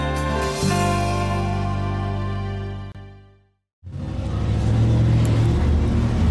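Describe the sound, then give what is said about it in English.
A loud, throaty souped-up Chevy truck engine rumbles with a steady low drone, fades out briefly, then another heavy engine roar surges back in, gritty and powerful as it drives past through town. “No, that's a Chevy. It's another a souped-up Chevy running through town.”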